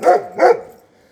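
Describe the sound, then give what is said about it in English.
Two sharp dog barks in quick succession, fairly loud, followed by a brief fading tail with no other sounds. “Shut up, dog.”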